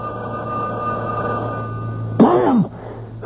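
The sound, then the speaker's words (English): A telephone rings with a steady, sustained electronic buzz for about two seconds, followed by a short, louder burst of a different sound before it trails off. “Stay away from the phone. If we wait long enough, they'll give up.”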